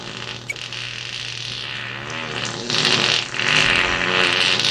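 A novelty firecracker, lit with a torch and meant to fly into the air, lets out a weird, raspy sputtering hiss that runs for several seconds, swelling louder in two surges toward the end, with a small pop near the start and a low steady hum underneath.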